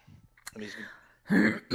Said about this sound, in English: Okay. My coughing fit is over.